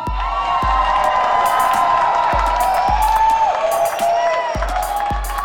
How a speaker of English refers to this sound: As the crowd is getting all amped up,